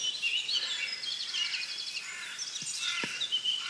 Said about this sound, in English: Which is quite accurate, I think, but there's a lot of blackcaps, blackbirds, a few chaffinches around.